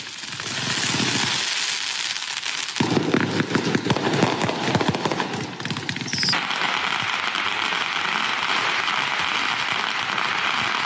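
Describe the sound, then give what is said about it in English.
Heavy-duty, out-of-control fireworks in New York in summer going off in a dense, rapid string of loud pops and crackles that peaks mid-way, with a constant roaring hiss around them and no talking. “Now, because of Black Lives Matter summer, a lot was going on, including fireworks that were totally out of control.”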